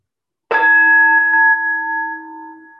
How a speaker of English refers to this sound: I'm going to ring the bell. And I just kind of want you kind of like to drift with the bell sound. Just follow it gently. No need to do any formal meditative practice. Just kind of go with the bell.